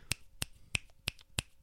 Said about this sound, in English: How do I clap for you both? I'll snap.